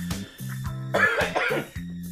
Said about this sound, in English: Now I'm coughing because I'm getting all hyped up.